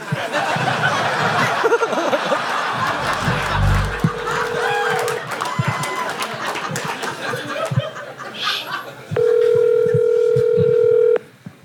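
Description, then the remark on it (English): A phone line rings out over a speakerphone with the volume turned all the way up, a steady electronic ring tone sounding loud, with muffled background chatter and a few chuckles around it and no one answering. “Yeah, put it on speaker. Make sure your volume's all the way up.”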